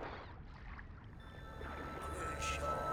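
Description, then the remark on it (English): A boat moves across open lake water, a steady low rumble with faint lapping and splashing that grows slightly louder toward the end. “Huh, another boat.”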